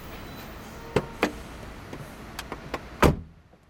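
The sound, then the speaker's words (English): A car door unlatches with a couple of sharp clicks, some lighter rattles follow, then the door shuts with a loud, solid thunk that fades out. No one speaks. “Here's my car. I must have circled back to it without thinking. Might as well get in, eh?”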